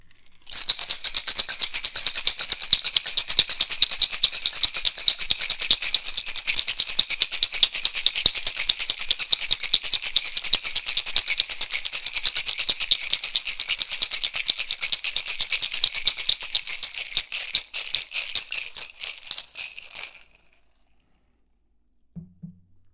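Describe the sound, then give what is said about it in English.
Ice rattles hard and fast inside a cocktail shaker for about twenty seconds, a dense, bright clatter of rapid rhythmic shakes that stops abruptly, followed by a brief low thump. “Now I'm going to put ice into the shaker.”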